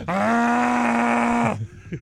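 A camel being milked lets out a loud, drawn-out grunting groan, steady and buzzy at a low pitch for over a second, then trails off into a couple of short, throaty rumbles.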